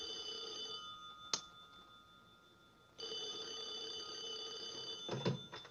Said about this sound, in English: Yeah, so here's the phone call telling this general what's going on, and he's just jacked up.